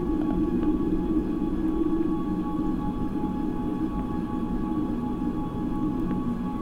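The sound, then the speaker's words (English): A heavy, continuous mechanical drone from a fishing boat's machinery heard underwater, with a thick low rumble and steady humming tones layered on top, holding an even loudness throughout with no voices. “And then it's just huge noise of machinery, and I'm thinking it's the fisherman boat, and I can't see it, but I can hear it.”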